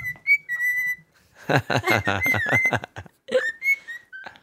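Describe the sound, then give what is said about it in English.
A female pet bird named Bird sings and whistles: clear, steady high whistled notes, then a dense burst of rapid warbling chatter, followed by more short, bright whistles. No one talks over it. “Sometimes she just loves to start singing.”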